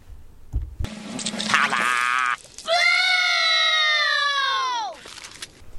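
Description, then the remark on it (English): Two loud, shrill screams from a stock sample: a short, strained one, then a longer, steady piercing wail that drops in pitch as it fades out. No talking is heard. “Do you think that's like one of those like old sample screams”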